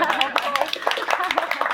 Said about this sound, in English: Okay, just make a clap first. Yeah.